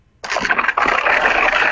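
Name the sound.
door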